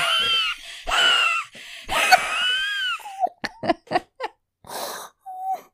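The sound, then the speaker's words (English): Several bursts of high, whistling, loud wheezes give way to a quick run of short, sharp coughs brought on by the wheezing, then a final wheezy gasp. “Wheezing makes me cough.”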